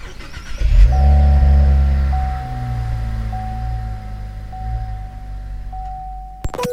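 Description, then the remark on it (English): The 3.6-litre twin-turbo V6 engine of a Cadillac ATS-V coupe, started with the engine start button, cranks and catches with a loud low rumble, then settles into a steady, burbling idle with a faint high whine running over it, ending in a sharp click. “Engine start button, dip the clutch and wait for the V6 3.6 engine with the twin turbos to just burble into life.”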